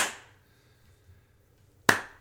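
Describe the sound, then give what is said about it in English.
Two sharp, bright hand claps layered on snare hits, one at the start and another near the end, each with a short ringing decay, over a quiet low backing. “And to do hand claps on every snare hit in that era meant that someone sat there for the 4 minutes of this song, however long it was, and went.”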